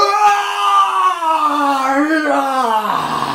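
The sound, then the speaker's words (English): A man's voice imitates a raging king's scream in a hall: one long, loud, sustained cry, holding steady for about three seconds before the pitch drops and breaks off. “So, as all of you, you look as you see these boom, boom, these bursts of energy occurring within the king, and as he screams at you, the screams that he's letting out get louder and louder, reverberating all around the hall.”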